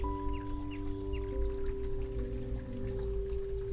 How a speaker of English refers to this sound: I'm here in the forest, so you can hear the birds and the river. It's not windy today, but it is raining a little bit, so you can probably hear the rain as well.